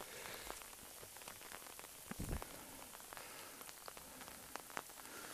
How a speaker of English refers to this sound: Pouring with rain. I'm getting very wet.